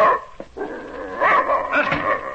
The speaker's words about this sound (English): German shepherd dog, that's what he is. Come out of the army. Like I said, real bad. Vicious.